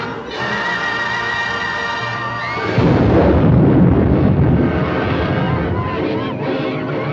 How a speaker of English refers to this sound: And then, but Margaret Hamilton's character, the Wicked Witch of the West, would come in a fiery, flaming, like, explosion of smoke.